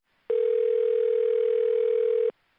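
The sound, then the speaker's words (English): A single steady electronic telephone tone sounds for about two seconds, loud and clear, then stops abruptly. No voices or other sounds. “he is very excited to tell his father, and just about that time, the phone rings.”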